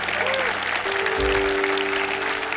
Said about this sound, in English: Come on, let's just give God a good clap. Come on, you can do a little better this morning. Let's give God some praise this morning.